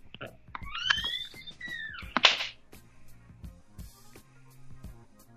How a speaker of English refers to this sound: Is that the regular hang-up sound? The closing door? I don't think I've ever heard somebody hang-up. Yeah, there is a closing door hang-up sound, yeah.